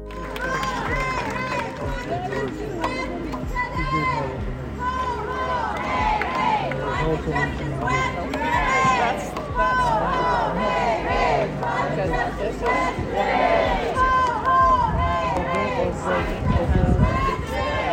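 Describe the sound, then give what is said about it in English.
A large, lively crowd of climate strike protesters carrying signs, at the intersection of University Avenue and Union Street, fills the scene with dense overlapping voices, chatter and occasional shouts, sustained and energetic throughout. “The crowd was lively and passionate, arriving with signs and showing their support for the cause.”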